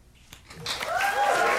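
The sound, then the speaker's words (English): A crowd bursts into applause, a dense wash of clapping that swells after a brief quiet start, mixed with rising cheers and whoops. “I feel like I have to clap too, because, you know, I feel like a part of it.”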